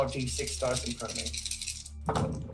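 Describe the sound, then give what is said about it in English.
Five six-sided dice clatter and rattle together as they are shaken and rolled across a surface for damage in a tabletop game, a busy stretch of clicking, with a final burst near the end and some voices murmuring underneath. “I will allow you to roll this.”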